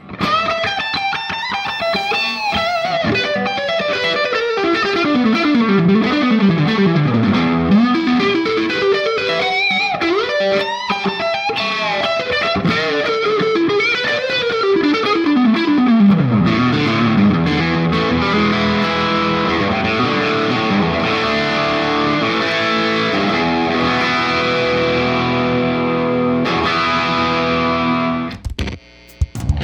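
A used, loaned electric guitar plays through heavy distortion and effects, sweeping pitch bends and dense sustained chords filling about thirty seconds of loud, continuous playing with no voices.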